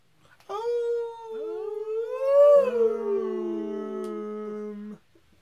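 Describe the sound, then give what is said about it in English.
A long, drawn-out howl rising and falling in pitch for about four seconds, with a second lower tone joining partway through. Fairly loud, and no talking. “Oh, is that your wolf?”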